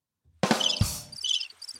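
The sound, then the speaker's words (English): A cricket chirping sound effect: bursts of high, pulsing chirps repeat several times after a sudden onset, clear, with no one talking over them. “Oh, I did the crickets.”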